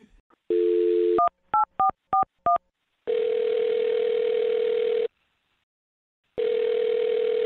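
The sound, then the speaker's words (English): A steady dial tone gives way to a quick run of five touch-tone beeps as a woman's phone number is punched in for a call on the radio show Brooke and Jubal in the Morning, followed by long, even ringback tones separated by a pause of silence. “What I'm trying to get to is that I'm going to dial her phone number and see if we can get her on the phone and get your second date update, okay?”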